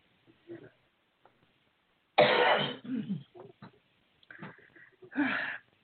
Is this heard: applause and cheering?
no